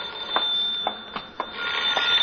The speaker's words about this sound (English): Answer the phone, will you?